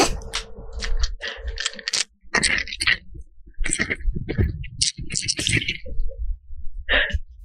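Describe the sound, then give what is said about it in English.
Dice rattle and clatter, a dense run of sharp clicks and knocks in uneven bursts, with brief pauses between shakes and rolls. “Here I have some dice with me.”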